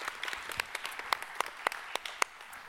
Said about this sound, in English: So yes, give a round of applause. So wonderful.